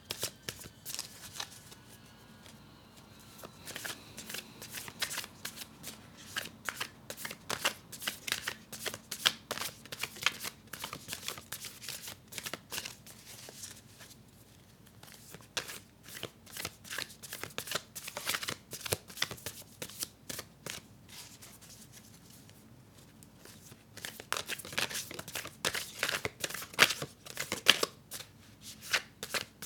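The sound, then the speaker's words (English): A deck of tarot cards being shuffled, with dense rapid riffling and flicking bursts that rise and fall in waves for about half a minute, no voices. “But I'm going to shuffle and see what else I get.”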